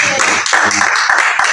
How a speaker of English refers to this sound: Y'all come on, clap our hands for the Lord.